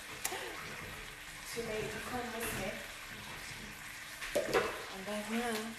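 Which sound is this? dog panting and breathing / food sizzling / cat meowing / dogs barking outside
food sizzling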